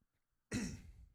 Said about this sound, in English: We, excuse me, hold on, let me mute my mic. I need to cough.